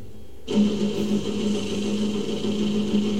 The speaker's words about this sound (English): That is indeed a drone whirring. That's a drone whirring.